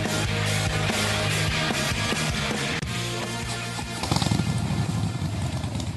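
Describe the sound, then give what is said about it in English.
A Harley-Davidson motorcycle engine rumbles loudly with a steady, throbbing idle, then revs harder near the end, the roar swelling and growing rougher. No one speaks. “Who needs a rev up? For Harley Heaven, the Harley Davidson Pan America is coming to Harley Heaven in Melbourne, Dandenong and Ringwood.”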